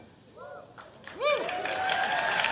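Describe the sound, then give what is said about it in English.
Polite, subdued applause from the Golden Globes award show audience swells after a moment and holds steady, with voices speaking over the muted clapping. “Yeah, the crowd seems like they all took an Ambien.”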